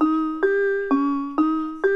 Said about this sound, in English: Yeah, and here's an example of a piano sound without reverb.